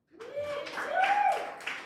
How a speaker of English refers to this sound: Could I have a round of applause for the bad word boys?